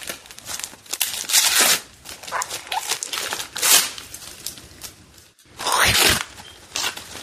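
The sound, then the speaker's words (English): Old-school reindeer-print wrapping paper rips and crinkles in a series of loud, uneven tears, with bursts of crumpling in between as a gift is torn open. “I like this wrapping paper. That's cute. That's old school. It's old school Rudolph the Red-Nosed Reindeer. I like that. Cool. I almost hate to open it, but I'm gonna.”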